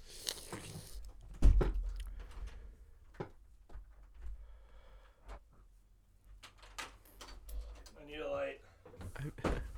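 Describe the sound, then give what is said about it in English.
A door bangs shut with one heavy thud, followed by scattered clicks, rustling and handling noises, with a muffled voice briefly audible near the end. “Shut the door!”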